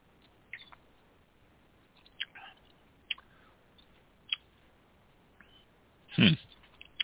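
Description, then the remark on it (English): Quiet mouth sounds while tasting non-alcoholic wine: a few faint wet clicks and smacks, then one louder slurping sip from a glass near the end, with no talking. “Now let's do a couple of sips.”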